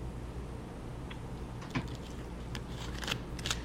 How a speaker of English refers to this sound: I will put some paper together and chalk that shit down.